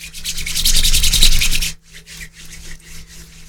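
Two hands rub together in quick, steady swishing strokes, the first step of a rain clap, a hissy brushing sound that is fuller at first, then drops to a softer, lighter rubbing.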